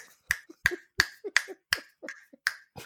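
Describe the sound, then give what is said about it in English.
Fingers snap sharply about six times in a steady rhythm, with a brief pause before the last snap. Each click is bright and crisp, and faint low murmurs sit between them. “I'm snapping my fingers so hard, and not in the Atlanta way, boy.”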